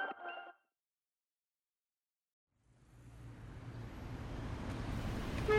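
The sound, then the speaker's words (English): After a brief pause, a dense rumble of idling engines from traffic that is stuck and not moving swells and grows steadily louder, with a short car horn honk breaking through near the end. No one speaks. “This traffic is not moving, and I'm stuck.”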